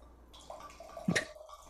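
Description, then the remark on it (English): Bar Dog wine from Target trickles through a pour-top aerator, a soft, steady pour with a brief louder gurgle and splash near the end; no one speaks. “Listen to that ASMR I put it in in the the pour. aerator.”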